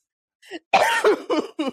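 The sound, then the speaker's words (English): A short fit of loud coughing: a small cough, then a harsh raspy one and several quicker coughs in an uneven burst, with a throat-clearing quality. “Oh, I'm going to start coughing.”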